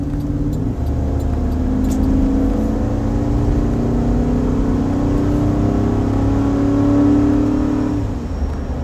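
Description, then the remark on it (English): A car engine revs and pulls hard as the car overtakes a slow truck ahead, its drone climbing steadily in pitch for several seconds before easing off near the end, loud with steady road noise underneath. “I got a truck that's going real slow ahead of me, and I'm going to have to get around them somehow, some way, any second now.”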